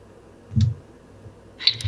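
Typing on a man's computer keyboard, picked up by his microphone, comes through in two short bursts: a single dull tap followed later by a quick run of crisp, light clicks, all fairly quiet with no voices.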